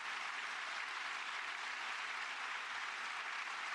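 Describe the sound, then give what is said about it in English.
Steady, dense applause from a crowd responding to a speaker's message that they need to vote, a continuous wash of clapping that stays loud and even throughout with no voices breaking through. “Well, you didn't have to ask for that applause.”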